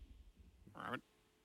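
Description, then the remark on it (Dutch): A person voices one short, throaty frog croak, loud, after a moment of quiet low rumble, then it cuts off abruptly. “Ik ben een kikker.”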